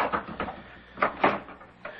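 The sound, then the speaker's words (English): A door is opened with a few short, muffled clunks and scrapes of the latch and frame, at moderate volume with no one speaking. “Would you open the door, please? Yes. Yes, of course.”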